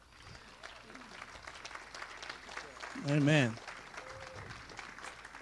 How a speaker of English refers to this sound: And I'm going to have you and your wife come up so we can give you guys a hand clap this morning.